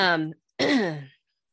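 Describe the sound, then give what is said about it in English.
Two loud coughs in quick succession, each a short voiced, throaty burst separated by a brief pause, with no talking around them. “I haven't coughed for a week. And all of a sudden right now. Now it's happening.”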